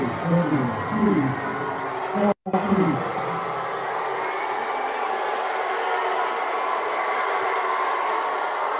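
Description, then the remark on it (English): A large crowd in Dearborn, Michigan boos a female performer in a loud, sustained roar as she is given the mic. Some voices stand out in the first few seconds, the sound cuts out briefly, then the booing carries on steadily. “They are booing the shit out of her.”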